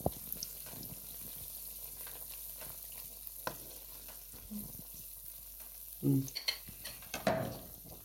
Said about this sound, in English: Okay, I'm just dropping like a spoonful of the batter into, we've got like quite a lot of oil, we're kind of deep frying them. That's making a really nice sound.